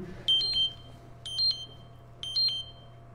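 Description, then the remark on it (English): A blood sugar monitor alarm chimes three times in quick double-beep bursts, high-pitched electronic tones about a second apart, over a low steady hum with no talking. “Sorry, that's a blood sugar alarm.”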